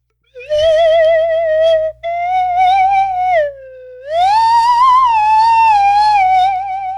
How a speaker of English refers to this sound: And then I'll do a quick musical interlude with my slide whistle. This is a little something from Titanic.